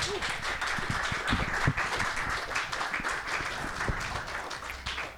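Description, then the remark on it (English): A seminar audience applauds the presenters steadily, a dense wash of many hands clapping at an even level throughout, with a few sharper individual claps standing out and no talking. “Do you want to give them a round of applause?”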